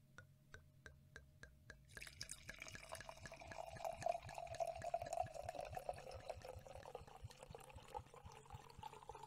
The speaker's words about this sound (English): Damn, that is quite the pour.